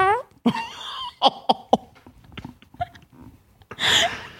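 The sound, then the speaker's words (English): A buzzy, fart-like noise opens, followed by a quick string of sharp sputtering pops and a final rougher, noisy blast, fairly loud with no clear talking. “That sounds like a fart.”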